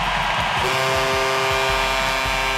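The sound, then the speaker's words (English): A loud, steady arena horn blasts in after a moment and holds its deep buzzing tone, blaring over a roaring, cheering crowd to signal the end of an ice hockey game at T-Mobile Arena in Las Vegas, where the Knights beat the Coyotes 5-2. “Here comes the final hole.”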